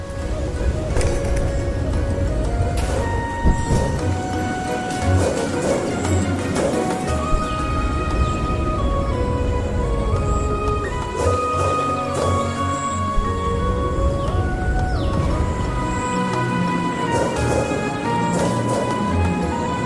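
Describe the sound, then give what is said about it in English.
Mystical video game music that plays while gliding through the air, with layered, sustained tonal notes that shift in pitch over a steady low drone, broken now and then by brief sharp sound effects, all at an even, fairly loud level. “The effect is very mystical, kind of like a what you'd hear playing over broad, panning shots in documentaries about birds in flight.”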